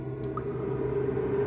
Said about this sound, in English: Water dripped from the ceiling and rose up around her ankles. She heard her feet splashing as she tried to move.